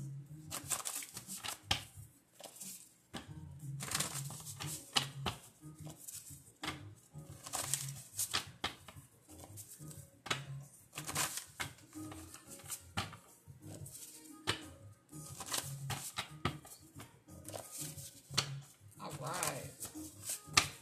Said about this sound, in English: Let me go ahead and shuffle the jar cards real quick.